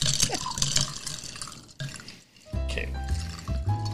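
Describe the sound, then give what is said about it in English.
A drink with honey being stirred: liquid sloshes and swirls with scraping and light clinks, a short pause midway, then louder ringing, resonant tones as the stirring resumes. “Stir? Yeah, we'll give it a stir.”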